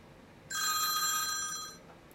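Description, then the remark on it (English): A telephone bell rings once, a bright, sustained metallic trill lasting just over a second, clear against a quiet background. “Anyway, I needed to hide the fact that I was really ticked off, so I answered the phone as professionally as I could.”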